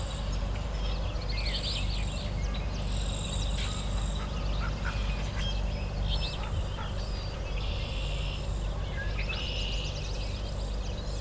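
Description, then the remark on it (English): A female hooded merganser calls in short, rough bursts while flying past, mixed in with busy marsh birdsong over a constant low outdoor rumble. “I think it's a female hooded merganser, actually.”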